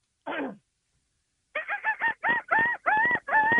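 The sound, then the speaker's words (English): A person imitates a seagull's call: one short squawk, a brief pause, then a quick run of about eight loud, nasal, laughing cries, with no other sounds. “my friend was, like, you know, imitating a bird one day, and I was like, I'll try it.”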